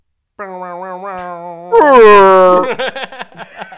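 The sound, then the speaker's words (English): A voice imitates a bomb with a low, steady hum that swells into a loud, raspy roar, then breaks apart into short sputtering bursts. “I was trying to do a bomb sound. But it turned into roar.”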